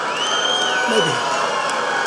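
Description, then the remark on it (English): A dense crowd roars steadily with mixed cheers and shouts, a sustained high whistle-like tone gliding across it, and a brief low groaning voice dipping downward midway. “There were groans, there were cheers, there were whistles, but there were groans, too.”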